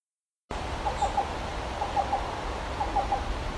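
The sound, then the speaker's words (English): A black-billed cuckoo repeats its soft, hollow coo-coo-coo call, three quick evenly spaced notes per phrase, given three times against a steady hiss of background noise. “This is a black-billed cuckoo doing its literal coo-coo-coo.”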